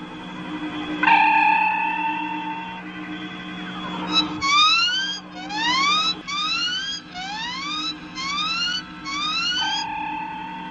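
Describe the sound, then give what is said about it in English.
A steady electronic tone gives way to a string of rapid rising whoops, repeating in tight bursts: an old-style radio distress signal from a ship in trouble making a forced landing, keyed to cause interference and attract attention. It crackles through loud, with no voices. “We're passing through an old-style distress signal. They were keyed to cause interference and attract attention this way.”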